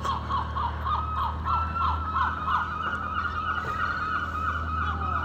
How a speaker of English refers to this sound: A couple of young gulls attacking fish corpses in the shallow waters of the harbour as the tide's properly out now.